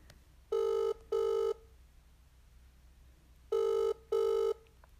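A ringback tone heard on an outgoing early-morning phone call on a long weekend: two paired bursts of steady electronic ringing, a second apart, with a long pause between pairs, clear and fairly loud over a faint line hum.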